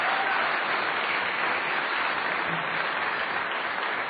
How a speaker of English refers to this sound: Gentlemen, you can just come through the side, and a round of applause once again. And I'd just also like to invite one more round of applause for Robert Rosenkranz, because he made all of this possible.